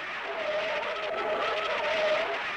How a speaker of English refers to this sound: I put my foot lightly on the brakes. It was just the slightest touch. Immediately the car skidded sideways and swerved this way and that, and finally swung around in a complete turn. It was almost as if I had jammed on the brakes on a wet pavement.